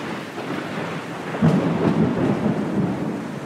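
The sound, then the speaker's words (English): Steady rain hisses throughout while a low rumble of thunder swells in around the midpoint and rolls on, loud, with no voices. “Once Ben saw lightning during a storm and thought that it must be electricity.”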